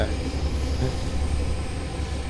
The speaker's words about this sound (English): Little passenger train going by. Maybe it'll go by just in time to see me fucking bail off of this log and fall into the ocean.